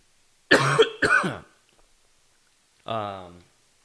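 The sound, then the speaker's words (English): Two harsh, rasping coughs in quick succession, loud, followed after a short pause by a brief voiced groan-like sound. “See this fucking cough.”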